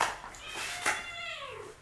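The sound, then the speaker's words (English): A cat meows once in a drawn-out, wavering cry with a falling pitch, moderately loud, with no voices over it. “Let's get rid of this fucking cat.”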